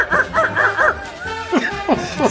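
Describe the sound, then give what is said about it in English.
A person imitates a dolphin with a quick run of high, squeaky chirps and whistles, about seven or eight bursts, several sliding down in pitch, fairly loud with no other sounds. “See, like you went down a rabbit hole that, no, damn it, I need a dolphin sound and you're going to do it now.”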